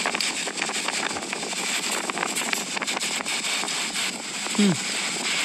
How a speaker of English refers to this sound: I'm just going to hold my phone up to the microphone. Hopefully you can hear this wind.